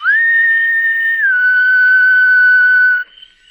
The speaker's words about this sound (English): Moving silently across the soft cushion of the lawn, he stationed himself beneath a second-story window. Looking up, he whistled softly.